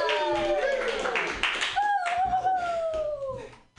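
Audience applause for a comedian at the Joke Workshop comedy show fills the background, a steady patter of clapping beneath loud, drawn-out vocal sounds, like whoops or cheering, that rise and slide in pitch before fading near the end.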